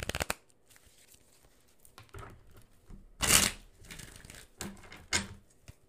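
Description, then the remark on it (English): Rustling and riffling of a Rider-Waite-Smith tarot card deck being shuffled, with soft papery flicks and one louder, crisp burst of cards snapping together midway. No talking. “Here's your Madam Adam ASMR as we shuffle.”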